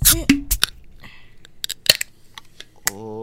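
Soft, scattered crackling ticks of ginger ale fizzing, mixed with a few sharper clicks and handling knocks, before a brief hum of voice at the end.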